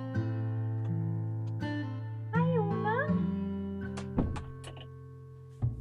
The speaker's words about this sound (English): Just a second, my cat wants to come in.